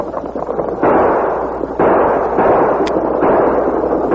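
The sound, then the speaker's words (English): Gunshots ring out in a rapid volley as outlaws Sax and Gloomy fire on a stagecoach's shotgun guard and driver, several sharp, loud reports cracking over a dense, rumbling roar of noise, with no voices heard. “As Morgan grabbed his shotgun, Sax and Gloomy fired.”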